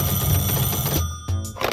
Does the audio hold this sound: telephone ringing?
yes